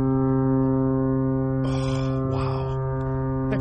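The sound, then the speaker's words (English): A loud, deep foghorn sound effect drones steadily for several seconds without a break, its rich buzzing tone holding even, while brief bursts of noisy rustle flicker over it midway. “Is that a new foghorn?”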